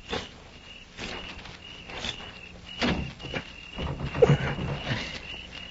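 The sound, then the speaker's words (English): A series of muffled footsteps approaches, followed by dull clunks and a brief rattle as someone tries a bolted, shut door. A steady, thin insect-like hum runs underneath, and no one speaks. “I'm going to try the door.”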